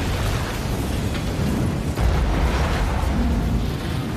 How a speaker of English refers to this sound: And if you're watching the film and you look at the timestamp, this explosion happens at 33 minutes and 3 seconds.